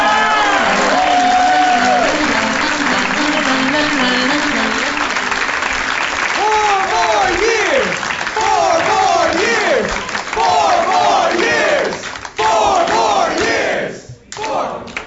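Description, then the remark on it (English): A live audience in Philadelphia, Pennsylvania applauds loudly and steadily after hearing the name of their hometown, with shouts and whoops rising over the dense clapping, before the noise briefly dips twice near the end. “They were applauding as I did such a good job saying the name of the place where they live.”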